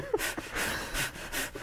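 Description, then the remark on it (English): A person imitates a cow huffing and breathing heavily: about four loud, breathy bursts of air in a loose, uneven rhythm, with no words spoken. “Just in case it ever sneaks up on me from behind, what does a cow sound like when it's huffing and puffing? Breathing heavily.”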